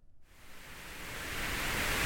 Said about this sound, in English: Or do you like to fall asleep to music, perhaps the soothing sounds of white noise?